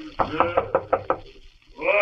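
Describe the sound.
Five quick, evenly spaced knocks rap on the wooden door of Jekyll's laboratory, fairly loud, followed by a brief pause and then a voice beginning to speak.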